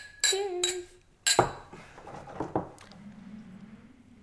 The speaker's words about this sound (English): Come Let's have a little bit of whiskey. Hopefully we can smooth all of this over. You ready? Exactly. All right. Cheers. Cheers.